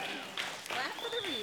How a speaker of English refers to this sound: Yeah, you can clap for the reader.